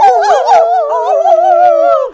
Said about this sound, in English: A pack of howling wolves.